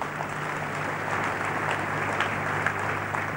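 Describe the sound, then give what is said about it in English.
An audience applauds for Jesus, steadily, a dense wash of many hands clapping at an even loudness throughout, with a low steady hum underneath and no one speaking. “Let's clap for Jesus.”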